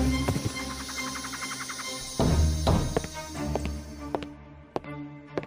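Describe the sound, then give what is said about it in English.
Horse hooves clip-clop in a quick, steady rhythm as a horse carrying a rider and a girl rides off out of the woods, a series of sharp knocks that move along and thin out toward the end, with no voices present. “Suddenly, out of the woods, a hand grabbed Letitia, put her on a horse, and rode off.”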